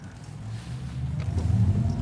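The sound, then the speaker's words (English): A low, humming synthetic sports driving sound from an electric car, selected by the driver, swells steadily louder over two seconds, its engine-like drone rising slightly in pitch, with no talking. “So what I have on is the electric sports sound here, which I can select.”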